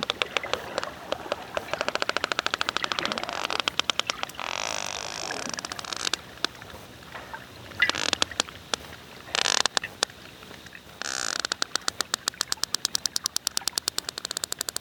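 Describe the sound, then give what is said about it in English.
Sperm whales clicking back and forth: dense trains of sharp, rapid clicks with irregular rhythm, speeding into creaky buzzes and pausing, over a hiss of underwater noise. No voices. “So what that was, it was not the sound of a hammock twisting in the wind, which is what it sounds like to me, but that was the sound of sperm whales talking to each other.”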